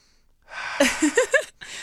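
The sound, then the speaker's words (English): A sharp nasal sniff from a small essential-oil-based nasal inhaler tube stuck in the nose, followed by a few short, pitched vocal noises rising and falling in quick succession, then another breathy rush of air at the end. “You guys, if you're listening and you're not watching the video right now, he's literally just sticking this little tube in his nose, sniffing it, and then making some sound effects after.”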